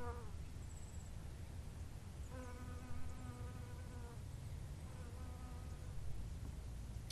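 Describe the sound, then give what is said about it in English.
A bee buzzes among flowering plants at the end of summer in Victoria, Australia, in a few passes, its droning hum rising and fading over a steady outdoor background hiss, with brief quiet gaps between bursts. “You might not be able to hear the flowering plants, but the bee might give away that I'm not in Antarctica today.”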